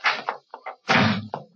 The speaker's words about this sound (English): Well, what do you think of that? She slammed the door in my face.